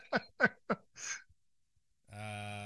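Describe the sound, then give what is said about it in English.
Three quick, sharp sniffs followed by a longer breathy inhale, a voice imitating the nose of a spacecraft sniffing out a scent; a steady voiced tone begins after a brief pause. “Is the nose of the spacecraft breathing in?”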